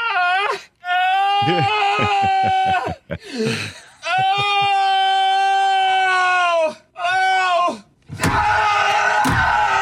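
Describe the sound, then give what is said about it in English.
A bathroom door creaks open in long, loud, drawn-out squeals and groans, stretched over several seconds with brief pauses, then ends in a harsh, noisy bang as it slams shut. “Bathroom door.”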